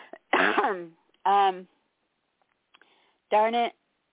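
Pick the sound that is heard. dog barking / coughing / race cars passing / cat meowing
coughing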